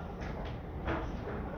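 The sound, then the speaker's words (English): A door is pushed closed, giving a few short, soft scraping bursts with a slightly louder one near the end, over a steady low background hum. No one speaks. “Or maybe close the other door so we don't make noise for whoever it is, but yeah.”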